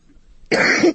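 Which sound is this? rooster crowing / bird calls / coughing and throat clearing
coughing and throat clearing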